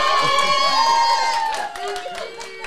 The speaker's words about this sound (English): You can clap for him.